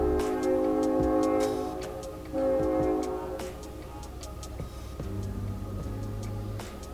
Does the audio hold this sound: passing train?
yes